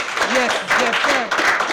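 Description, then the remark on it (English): A burst of audience applause for Jennifer King, the first Black female coach for the Washington football team: a dense steady patter of many hands clapping, with voices rising and falling over it for the whole short stretch. “Yeah, round of applause for Jennifer King.”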